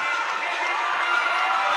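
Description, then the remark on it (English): A dense, steady roar of a large crowd cheering loudly at a high school Division 4 District Final basketball game at Liberty Benton High School, tied 45 apiece with six seconds left, as a player shoots a free throw; everyone is on their feet. Sustained without a break, no clear speech. “Man, you can't ask for a better crowd, better environment in the game right now.”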